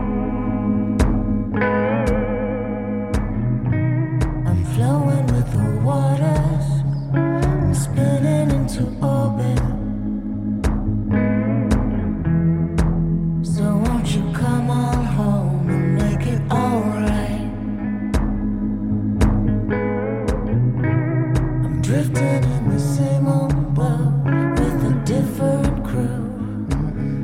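A rock song plays steadily at full volume, with a driving drum beat, layered sustained guitars and bass, and a heavy wash of echo and reverb throughout; no one speaks.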